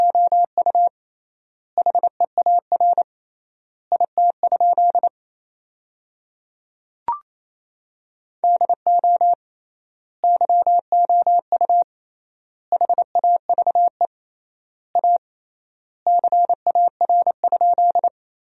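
Rapid Morse code at 28 words per minute in a steady mid-pitched tone, sending sentences made from the 300 most common words, with quick dots and dashes grouped into words separated by long, triple-length word spaces. There is no talking, and one short click sounds midway.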